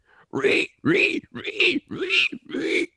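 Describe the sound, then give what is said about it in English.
A person imitates a pig, letting out five loud, nasal oinking grunts in a steady rhythm, each short burst separated by brief pauses. “and everyone else is looking at me like, please, the pig noises aren't funny.”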